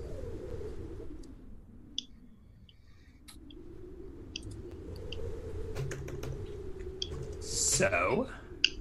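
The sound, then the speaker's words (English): Quiet, scattered clicks of a game master typing on a computer keyboard while tidying up notes, irregular, over a low steady background hum, with a brief louder burst near the end. “I hear the DM typing.”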